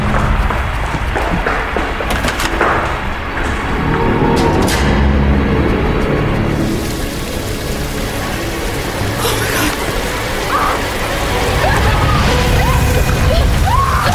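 Water sloshes and splashes steadily and fairly loudly throughout, with a few sharper splashes breaking through the churning wash and faint voices in the background.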